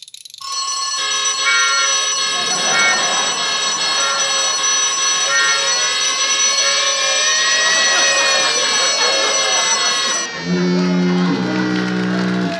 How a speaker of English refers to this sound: Well, the alarm still works. Switch that off.